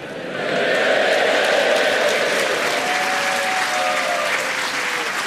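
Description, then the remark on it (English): A large crowd gathered at the newly built Albert Hall for the Christmas finals of a tournament claps steadily, the applause swelling in over the first half second and holding loud and dense, with a faint murmur of voices beneath, echoing in the big hall. “See, We are at the newly built Albert Hall, and on this day, the crowds are gathered for the Christmas finals of the British Empire Mornington Crescent Tournament.”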